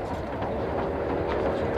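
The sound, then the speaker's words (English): A steady, continuous rumble of a moving train with rhythmic clatter of wheels on the rails, constant throughout, with no one speaking, in a film scene where Barbara Hershey's character Harriet Bird has dinner on the train. “Sort of comes and has dinner with him on the train and begins talking about what it is to be a sports hero.”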